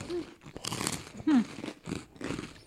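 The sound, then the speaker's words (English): Crisp crunching of someone biting into a puffed rice snack, several loud brittle crackles in quick succession, with a faint murmured hum from the eater. “It's very crunchy. It is very crunchy.”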